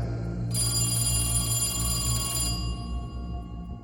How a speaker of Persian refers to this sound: تلفن زنگ زد.